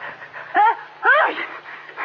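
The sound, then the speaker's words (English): A sneeze at a restaurant dinner table, blamed on a draft from a window, comes as two short, loud voiced bursts about half a second apart, with a pitched, wavering tone rising and falling in each, over a faint steady background hum. “Bless you. What's the matter? You catching cold?”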